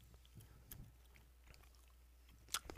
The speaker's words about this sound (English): I'm chewing my gum here.